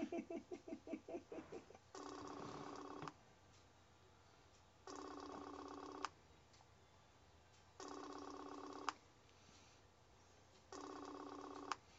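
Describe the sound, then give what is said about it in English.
A phone rings over and over with no answer: four clear, steady rings about a second long, evenly spaced with quiet gaps between them, following a brief fluttering sound at the start. “Answer your damn phone, man.”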